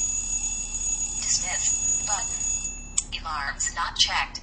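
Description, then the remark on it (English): An Android phone alarm chimes in repeated bright electronic tones, moderately loud, while a person talks over it. “Oh, there it is. Okay, there's the alarm.”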